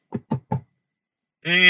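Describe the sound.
Three firm, evenly spaced knocks by police on the front door of a house, distinct, followed by a short pause before a voice starts calling out.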